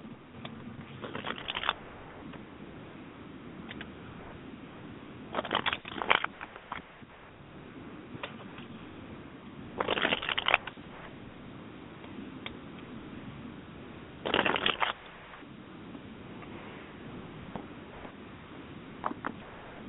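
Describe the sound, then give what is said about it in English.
Tarot cards being shuffled in four short riffling bursts spaced a few seconds apart, with soft handling rustles and quiet pauses between and no talking. “I'm still shuffling.”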